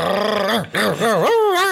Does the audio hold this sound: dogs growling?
yes